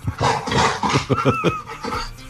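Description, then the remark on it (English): An excited black Labrador running loose in a studio, excited to see the presenter, pants and snuffles loudly in rapid bursts, with a brief high whine partway through. “The dog was a Labrador, Black Labrador, and was very excited to see the presenter.”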